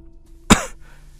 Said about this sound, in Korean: 헛기침을 하고 다시 문장을 이어갔다.